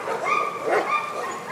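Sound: dogs barking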